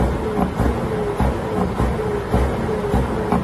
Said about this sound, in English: So that's basically, apparently, a truck is using his air brakes and revving his engine, according to this report.